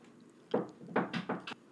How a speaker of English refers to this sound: My son just knocked on the door. I feel bad. He wanted to play too. He was like knocking on the door.